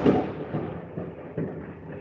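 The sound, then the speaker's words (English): A low, rolling rumble of thunder from a lightning storm outside in Chicago, fairly quiet, swelling in a few soft surges over two seconds with no voices. “There's some serious lightning going on outside, and I don't mean the Tampa Bay lightning.”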